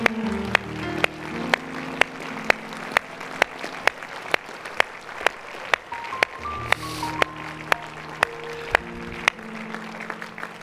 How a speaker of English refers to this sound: Let's celebrate. Clap our hands.